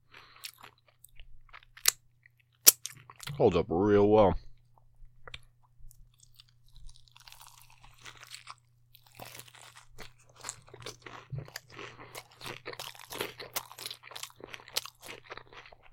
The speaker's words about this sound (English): So this has probably been sitting for like 20, 30 minutes, and it's still super crispy. Super crunchy.